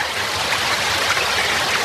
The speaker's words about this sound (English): we have a channel called Water on the system. I'll play a burst of it.